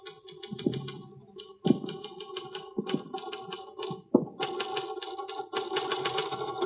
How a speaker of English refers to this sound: That's an interesting letter you're typing.